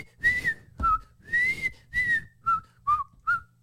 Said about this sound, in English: You are whistling everything but the Hunger Games.